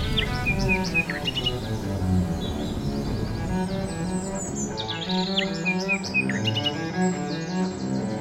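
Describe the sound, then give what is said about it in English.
Birds sing cheerfully throughout, with bright, repeated chirps and warbling phrases layered over a steady low ambient hum; no voices present. “As they walked, they could hear beautiful sounds and birds singing cheerfully.”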